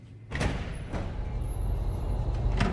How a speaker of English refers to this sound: Where is the Pioneer Audio Tour taking me today? Right outside this secure door. Let's go inside.